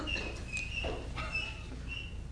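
A small bird chirps softly inside a tabernacle, giving several thin, high-pitched whistling notes spaced irregularly over a couple of seconds against a quiet background hum, with no one speaking.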